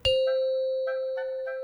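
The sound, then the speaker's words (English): A doorbell chime in a home rings out once with a sharp strike, then a clear, steady tone that lingers and slowly fades. It is fairly loud, with no voices. “stirred from his afternoon nap by a small chime that echoed throughout his home, the doorbell.”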